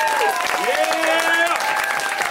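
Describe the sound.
An audience claps steadily in a dense, fast patter of many hands, fairly loud throughout, with a voice cheering or calling out over the applause.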